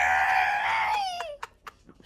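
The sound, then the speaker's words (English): During a game of animal impressions, a person trumpets like an elephant, a loud, brassy, high-pitched blare held for over a second before sliding downward and cutting off, followed by a few short breathy sounds. “Good elephant.”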